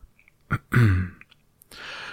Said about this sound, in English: gave a little cough and began.